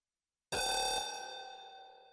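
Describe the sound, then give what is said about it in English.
A general alarm on Scirocco Station, pressed at the station computer, sounds a single bright, bell-like chime that starts abruptly after a moment of silence, then rings on with a slowly fading metallic tone. No voices. “In the background, an alarm begins to chime, but Station Administrator Farine doesn't have time to think about that as a shot rings out in the room and he crumples to the ground.”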